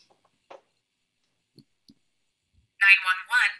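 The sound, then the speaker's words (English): A few soft, scattered clicks like keypad taps, then two loud, bright, buzzy bursts, a voice imitating a phone connected in a car dialing and ringing through on an emergency call. “You know, you get in the car, your phone automatically connect to your shit, right? So, you know, this is what's gonna play.”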